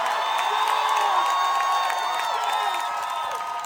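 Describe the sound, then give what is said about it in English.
A large crowd in Vancouver cheers steadily on Saturday, celebrating the election of Ken Sim as the city's first Chinese-Canadian mayor, a dense roar of voices with high whoops and shouts rising over it and scattered clapping, loud and unbroken for the whole few seconds. “It was quite the celebration, as you hear on Saturday.”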